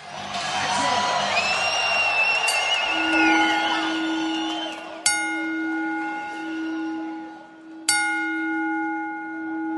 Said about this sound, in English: Our show starts with a three-bell salute for Bobby Duncombe Jr., who had actually passed away only a few hours before this show,